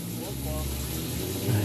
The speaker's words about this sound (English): We also have the door open. I have to, like, scream over the motorcycles.